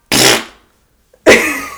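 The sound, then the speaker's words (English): A voice imitates the low, breathy murmur a dog makes when it farts, in two short, rough bursts separated by a brief pause, fairly loud, with no other talking. “And my dog, she murmurs when she farts. She's like, murr.”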